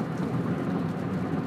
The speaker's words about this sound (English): Starting to rain.